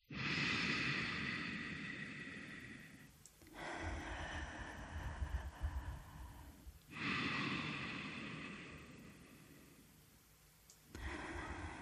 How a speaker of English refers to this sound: Take a moment to relax the body, letting go of posture and breathing easy. Now take two slow, deep breaths.